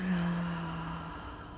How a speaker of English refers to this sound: Breathing in